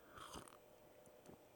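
Someone takes a drink from a chalice: a short slurp, then a few soft, wet gulping swallows at uneven intervals, quiet with no talking.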